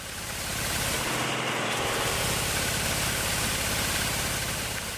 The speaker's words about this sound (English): So they'll grab the tree with a tractor on the with like kind of a fork on the bottom. And then they open up this Batman upside down umbrella underneath the tree. They shake the tree with that fork. All of the olives fall into the umbrella